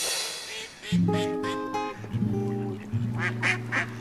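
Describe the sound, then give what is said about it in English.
Several ducks at a pond quack loudly in quick, overlapping bursts, with harsh nasal calls repeating over a soft outdoor background. “Oh, you know, just the ush, hanging out by the pond. The ducks and I like to feed each other stale bread.”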